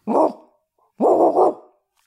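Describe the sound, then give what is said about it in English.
A person loudly imitates a big dog's bark, giving a deep single woof followed by a longer, doubled woof-woof, with a short pause between them. “If it was a little dog, no nerves at all. Big dog makes me real nervous.”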